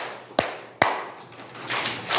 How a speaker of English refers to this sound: So I'm going to do my clap. When you hear me do the clap, you're going to quietly put your pencil down and do the clap back.